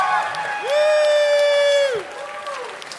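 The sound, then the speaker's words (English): A live show audience gives one more round of applause: one loud, sustained whoop rises, holds for about a second and trails off, over a softer wash of crowd noise and applause. “Also, one more round of applause for the amazing, multi-talented man of danger,”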